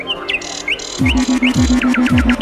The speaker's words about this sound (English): They call it birdsong. Just a random cacophony of squawks and chirrups. Real tune to speak of. What a racket.